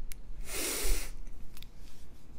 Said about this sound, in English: Ooh, that was a little yawn.